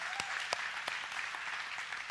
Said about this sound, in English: so let's give him a big round of applause for that message.